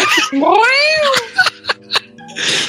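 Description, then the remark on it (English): A cat lets out one long, drawn-out meow, fairly loud, rising then falling in pitch, followed by a few sharp clicks and a short burst of breathy noise. “I'm just going to like the meow shut the fuck up cat.”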